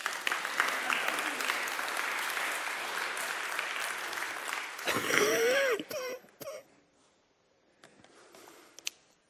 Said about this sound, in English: Clap for a sick guy.